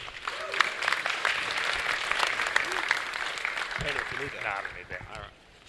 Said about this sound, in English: So could you please give a big round of applause to our very good friend,